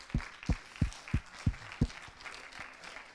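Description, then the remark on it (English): A church audience claps hands to the Lord during a morning worship service in a steady rhythm, six sharp unison claps about three per second, then the clapping fades into a soft murmur. “Would you clap your hands to the Lord this morning?”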